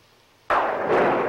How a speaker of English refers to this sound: And then thunder and lightning. Yes. Ironically, constantly.